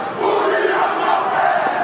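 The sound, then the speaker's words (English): A haka war chant: many voices bellow together in a loud, aggressive, steady roar, with no pauses across the short stretch. “And the song is more like a chant, and it's very aggressive and loud.”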